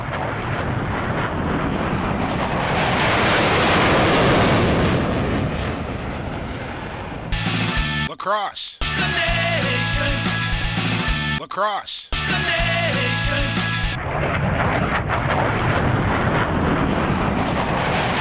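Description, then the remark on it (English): A loud, broad jet engine roar swells up, breaks into a stretch of tonal whooshing sweeps, then returns as steady rushing engine noise, like an airliner taking off. “I think we got to make our way out to the tarmac and get in the jet.”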